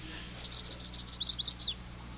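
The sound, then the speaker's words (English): A recorded bird sings a quick, high trill of about nine bright notes over roughly a second and a half, clear against a quiet background with a faint low hum. “And one more time, the original bird.”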